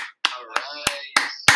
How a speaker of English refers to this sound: All right, you can get a cheer now.